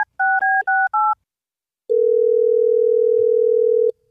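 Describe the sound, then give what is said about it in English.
Four quick touch-tone beeps from a phone keypad as a call is placed on air by radio station Hot 101.5, then a pause and a steady, loud telephone tone humming for about two seconds. No one speaks. “Well, let's try to get Liam on the phone for you, Cassie, because I am not having this.”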